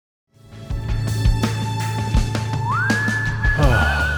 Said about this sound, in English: Goddamn, I fucking love whistling. I love songs that have whistling in it.